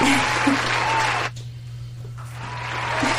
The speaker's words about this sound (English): Had to get you a double round of applause there.